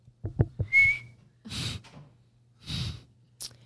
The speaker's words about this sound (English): I can whistle with an acorn top, guys. I can just whistle with my mouth. I mean, but that's not as fun.